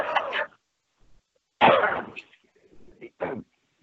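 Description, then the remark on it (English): A coughing fit: three harsh, raspy coughs, the middle one longest, separated by brief pauses filled with faint throaty sounds. “Pardon me while I have a cough and fit.”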